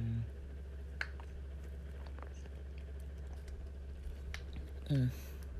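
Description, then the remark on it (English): Someone in Los Angeles drinks water from a crinkly plastic disposable water bottle, with faint wet mouth clicks and then a short gulping swallow near the end, all over a steady low background hum. “Sorry, I'm drinking water from my throat a little bit.”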